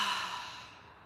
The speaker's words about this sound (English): And we're going to do 3 deep breaths, breathing in through the nose and out through the mouth.